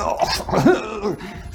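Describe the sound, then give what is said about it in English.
A voice imitates a man coughing and choking as he falls over, blue in the face: a short run of harsh, strained bursts with groaning voiced tones, fairly loud, lasting just over a second. “Both hands drop to his boys, and he falls over, blue in the face, coughing.”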